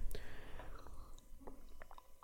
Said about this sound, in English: But any other circumstance, you should be taking a sip of water right now with me. So here we go.